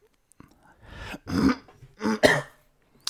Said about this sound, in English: I usually edit out when I cough or clear my throat or gross, airy, phlegmy sounds, but we're doing a commentary.